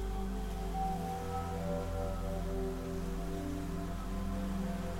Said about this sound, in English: As you continue walking, you become more and more aware of the sound of water.